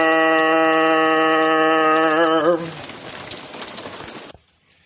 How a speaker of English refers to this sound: So a couple minutes later, it's still raining